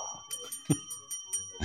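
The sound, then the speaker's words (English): A bell rung during a fill-in-the-blank guessing game rings with a bright, sustained metallic tone that lingers through the moment, while short bursts of background noise and faint voices break in around it. “He begrudgingly rings the bell.”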